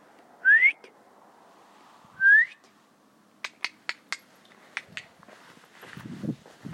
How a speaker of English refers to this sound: You know what? Having a dog has improved my whistle. I never been a top-class whistler.